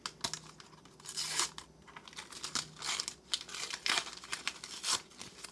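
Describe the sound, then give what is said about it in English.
Birthday gift wrapping paper printed with little flowers is torn and crumpled, a run of loud crackling rips and crinkles in irregular bursts, with no one speaking. “Look at the paper. It's got like little flowers on it.”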